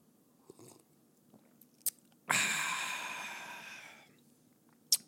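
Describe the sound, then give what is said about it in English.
A sip of Woodford Reserve bourbon whiskey: a sudden airy slurp that trails off over about two seconds, framed by small mouth or glass clicks, with no talking. “I'm taking a sip of a little Woodford Reserve here.”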